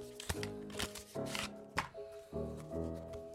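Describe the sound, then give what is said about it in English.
A pack of playing cards is opened and the cards are shuffled, with several quick, crisp riffling bursts spaced unevenly over a few seconds, over a soft sustained musical tone in the background. “Fred opened a pack of cards and started to shuffle.”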